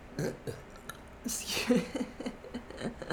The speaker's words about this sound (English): Excuse me? You better keep that in. The burp? All right, I will.